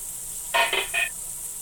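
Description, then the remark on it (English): Grease sizzles in a frying pan as burgers cook, with a steady hiss throughout, broken by three quick bright metallic scrapes or clinks near the middle. “I am now protecting myself from the grease.”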